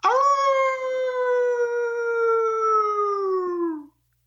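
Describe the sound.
A person imitates a hound dog's howl: one long, loud wail held for nearly four seconds, its pitch sliding slowly downward before cutting off, with no other sounds around it.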